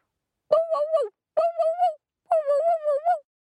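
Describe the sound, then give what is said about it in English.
A voice imitates a small dog barking: three high-pitched bursts, each made of two or three quick yaps, separated by short silences. “She shook her ears really hard and barked to wake up.”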